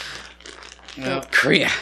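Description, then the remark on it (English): Plastic covering on a chair crinkles in a run of dry, scratchy rustles, soft at first, then a louder, denser burst of crackling near the end. “No, in that case, it's plastic over the chair, which I meant to pull off.”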